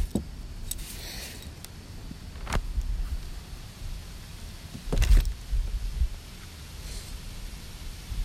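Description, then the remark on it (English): Gusty wind buffets the microphone, producing a steady low rumble with sharper bursts and crackles, loudest around the middle, and no one speaking. “It's windy as shit, bruh.”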